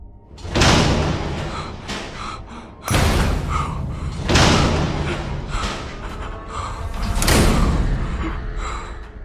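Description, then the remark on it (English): Six heavy cell doors on a pod in a cell block slam shut one after another, loud clanging impacts spaced a second or two apart, each ringing and echoing, with no talking. “I got about halfway there when then, one by one, the rest of the open cell doors on that pod slammed shut.”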